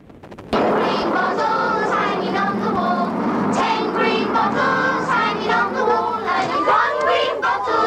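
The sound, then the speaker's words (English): A group of children singing together in unison, a bright, steady chorus of high voices that starts abruptly after a brief silence and carries on loudly without pause. “But beneath the sound of children singing, there is a hum of evil.”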